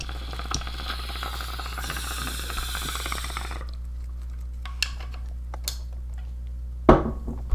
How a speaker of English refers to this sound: That was a fucking healthy bong rip. Jesus.